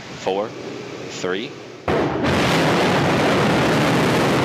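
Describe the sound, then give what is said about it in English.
A voice calls out twice, then a loud, broad rumbling roar of the engines of rocket LV-0009 igniting at liftoff from Kodiak, Alaska bursts in abruptly and holds steady, drowning everything in a continuous wall of noise. “The rocket has taken control of the countdown and everything is on track for liftoff.”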